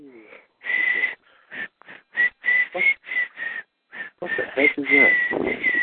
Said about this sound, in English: Whistling the Yellow Rose of Texas. That was me whistling. Oh, you whistling. Oh, okay. Yeah, that was the Yellow Rose. Talking about the Yellow Rose of Texas. That's why I was whistling that tune.